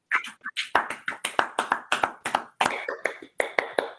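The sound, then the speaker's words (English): A round of applause during a service, thanking someone for what they shared: quick, fairly steady hand claps repeating throughout, crisp and moderately loud, with no one talking over them. “Let's give … a round of applause for that.”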